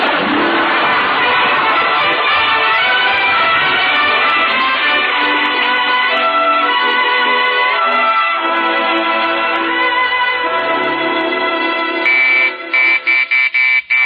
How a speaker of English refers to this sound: Okay, we're coming. Who in the world could be ringing the doorbell at this hour of the night?